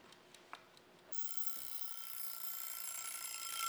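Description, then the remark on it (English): A timer alarm for a timed quiz abruptly starts ringing after a few faint ticks as time runs out, a sustained high, buzzing ring that keeps going and grows slightly louder, heard alone with no talking. “Okay, you can open to page 1 while I'm setting the clock.”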